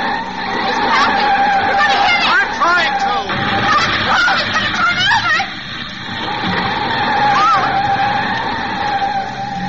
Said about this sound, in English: I'm going to pull to one side, slam on the brakes, and see what happens.